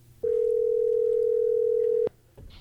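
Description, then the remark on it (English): A steady, loud telephone dial tone, heard as a phone call is placed, holds one mid pitch for nearly two seconds, then cuts off sharply, followed by faint rustling. “Yeah, dial him up.”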